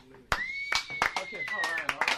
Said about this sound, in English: Did you intentionally give yourself, like, low clapping? Yeah, is that like myself, low energy? I gave myself sarcastic clapping.